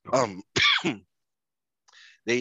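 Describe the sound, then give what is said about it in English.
A few harsh throat-clearing coughs in quick succession from a person who is still healing, followed by a brief pause and a softer raspy breath before another rough cough. “I might cough periodically because I'm still kind of healing here.”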